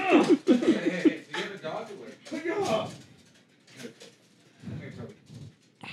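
An agitated dog, frothing at the mouth, lets out a rapid string of high, wavering whines and yelps, then quieter scuffling noises and brief vocal sounds follow.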